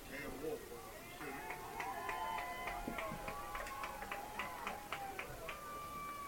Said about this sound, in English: Cam Wolf got a nice round of applause there